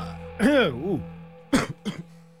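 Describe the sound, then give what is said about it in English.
Fairly loud coughing from a person who snorted a pixie stick that got in the throat: a drawn-out, rough voiced hack followed a moment later by two short, sharp coughs in quick succession over a faint steady hum. “A little coughing going on there.”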